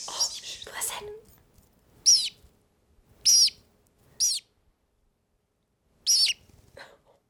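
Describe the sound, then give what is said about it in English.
A small female pet bird sings to a gold necklace, a series of short, bright chirps in separated bursts, fairly loud, with quiet pauses between calls and some faint rustling at the start. “She's singing to your gold necklace.”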